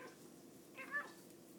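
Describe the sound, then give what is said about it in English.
A cat gives a single short meow, rising then falling in pitch, fairly soft, over a faint steady background hiss with no one talking. “The most talkative kitty on the planet”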